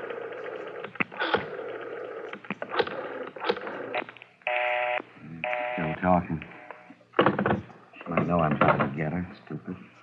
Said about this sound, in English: Dial 9 to get outside